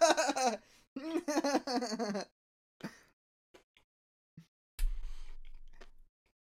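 A voice hums and laughs briefly, then crunchy chewing follows as a few sharp, crisp crunches and a longer rustly bite of a hot dog topped with crunchy bacon.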